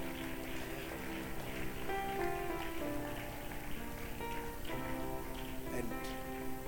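Sustained, dense applause from a large group clapping for people as they come forward, a steady crackling wash of many hands clapping at once, with faint tonal voices or music running underneath.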